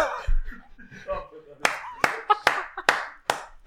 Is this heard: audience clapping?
yes